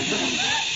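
A steady, breathy hiss from a person, like a drawn-out "shh", holding an even loudness for under a second with no words spoken.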